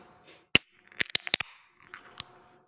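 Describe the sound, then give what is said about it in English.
A beer can being cracked open in a room with an echo: a sharp metallic click, then a quick cluster of snapping clicks, followed by a soft hiss of fizz and one last click. No voices. “The echo in the room really helps, like, really make it feel like you actually cracked open the beer.”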